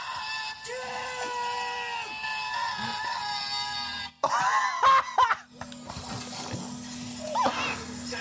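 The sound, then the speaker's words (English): A sudden, loud, strained death scream erupts midway, lasting about a second over a sustained electronic tonal background, followed by splashy, chaotic game-like sound effects. “Oh my God, that death scream was amazing!”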